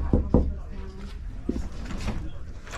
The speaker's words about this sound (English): What is this door? Oh, just the door to the bedroom. Maybe this is the bathroom.